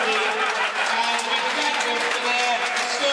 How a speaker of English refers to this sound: Listen to that. Standing applause all around the ground. Fantastic.